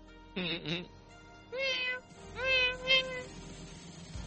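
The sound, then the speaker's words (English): A cat meows insistently three times in protest behind a closed door, each cry drawn out and wavering, with short pauses between them and no other voices. “Gotta listen to my cat as she protests now, because I got the door closed.”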